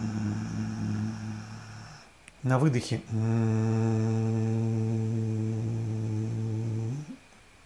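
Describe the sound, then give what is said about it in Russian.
A person doing bhramari pranayama breathing hums a low, steady buzz imitating a bee or bumblebee, on both inhale and exhale, in two long sustained breaths with a brief spoken phrase between them. The drone is loud and even, rich in overtones. “Это вот знаете, некоторые техники есть брамари, пранаяма. Звук пчелы, да, и шмеля.”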